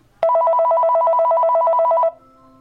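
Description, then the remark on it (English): A telephone connected to a Clasco talking caller ID rings once, loud, for a call from Mystic Access: a rapid electronic two-tone warble trilling steadily for about two seconds before cutting off into near silence. “So now I'm going to show you what it sounds like when the phone rings and what the caller ID sounds like.”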